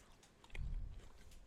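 A quiet crunch as someone bites into a crisp grape-flavoured Kit Kat wafer, followed by a second or so of softer chewing with a few faint crackles and no talking.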